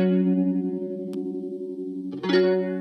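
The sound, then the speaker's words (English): An electric guitar run through a fuzz pedal plus Old Blood Noise Endeavors Visitor and Walrus Audio Lillian modulation pedals holds a thick, buzzing, out-of-phase chord with a gentle warble, then a brighter, louder chord is struck near the end. No one speaks. “Well, I noticed earlier when I was messing around with this that if I put on that Fuzz and I put on the Old Blood Noise Endeavors Visitor and the Walrus Audio Lillian pedal, whoa, I can get a kind of out-of-phase sound.”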